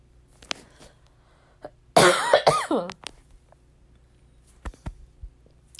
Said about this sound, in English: Yeah, y'all can hear me coughing.